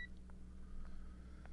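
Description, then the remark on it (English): A short electronic phone-dialing beep from a futuristic phone in a scene, then a few faint, soft tone blips spaced irregularly, all quiet over a steady low hum with no one speaking. “Never quite figured out future phone dials, so they tend to sound a lot like regular phone dialing.”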